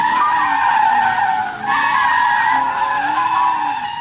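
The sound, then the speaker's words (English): A heavy Jeep's tires squeal loudly in a sustained, high-pitched skid that lasts about four seconds, with a brief dip partway through before the screech resumes at full strength. “That Jeep was a heavy, that was a lot of heavy squealing.”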